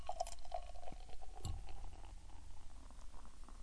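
A seasonal lacto milk stout made with Stumptown cold press coffee pours steadily into a glass, a continuous liquid gurgle and fizz with a few clinks near the start, fairly quiet, with no talking.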